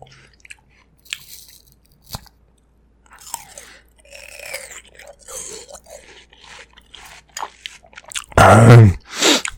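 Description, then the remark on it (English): Wet crunching of someone chewing watermelon for ASMR, with irregular bites and slurpy squishes building to a loud, sustained crunch near the end; no talking. “Should I just shove that clip right now of you doing the watermelon ASMR?”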